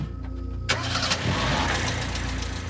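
An old 1930s flatbed prison truck engine turns over with a sharp burst and catches, then keeps running in a rough, uneven splutter as the truck is driven flat out up the hill into Mount Eden. Fairly loud, with no voices.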